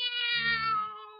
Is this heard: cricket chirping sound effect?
no